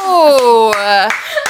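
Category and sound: human body sound, hand clapping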